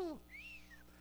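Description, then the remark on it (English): A short descending vocal whoop, then a single clear whistle that glides up and falls away, like an impressed wolf-whistle, moderately loud: a person whistling in astonishment. “You're going to see what God does and go, whoo-hoo, and whistle.”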